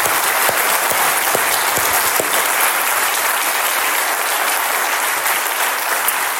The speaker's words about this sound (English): would you join me in a round of applause and appreciation for these guys?